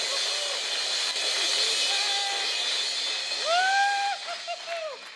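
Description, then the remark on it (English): An audience claps steadily in a dense, continuous wash of applause, with a few rising whoops and cheers breaking out over it toward the end. “Let's give them a clap.”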